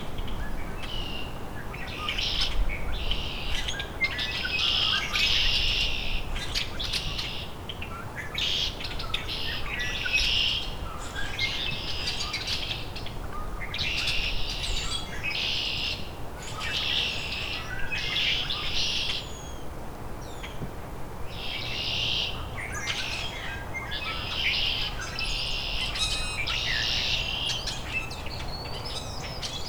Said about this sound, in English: Hairy woodpecker.